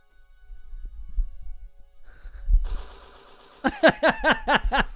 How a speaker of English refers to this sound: As someone he gives just the hammering, slow-mo, okay. Hammering the typewriter.